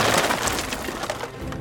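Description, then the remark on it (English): Loud splintering and cracking of a boat being shipwrecked in a storm in the English Channel: a dense chaotic burst of breaking timber mixed with crashing noise, continuous for under two seconds with no voices. “And he was shipwrecked.”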